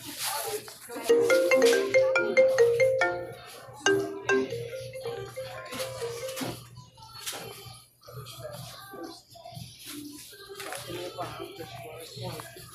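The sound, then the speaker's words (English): A WhatsApp video call ringtone plays a bright, repeating electronic melody for a few seconds, fairly loud, then gives way to rustling, clatter and faint background voices. “Yeah, can you phone me on WhatsApp video, please?”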